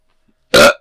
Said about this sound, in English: Just a burp.